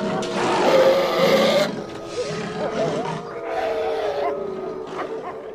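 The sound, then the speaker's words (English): Several wolves snarl and growl in a dense, overlapping chorus as they circle a woman in a courtyard, loudest and harshest in the first second and a half, then continuing as a steady, rumbling snarl without speech. “Wolves appear and circle around her.”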